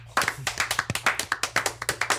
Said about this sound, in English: Can we just give a really obnoxiously loud round of applause for one?